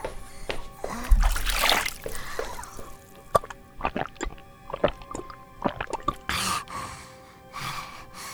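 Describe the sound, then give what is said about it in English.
Water splashes, followed by a run of scattered, irregular drips and small plops, then a couple more brief splashes near the end, with no one speaking. “Water? Yes, water.”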